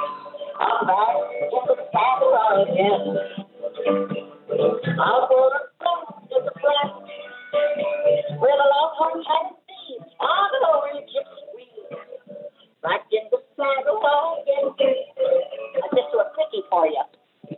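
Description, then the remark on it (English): A song with guitar and voice, played live by a woman from her bathroom, comes through a telephone line, thin and tinny with the highs cut off, playing continuously at steady volume with a few brief pauses. “Yeah, the sound isn't great over the phone.”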